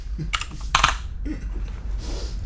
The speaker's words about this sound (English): me and the Clicky Mechanical Keyboard, welcome aboard. We're going to click our way through the next hour and 38 minutes.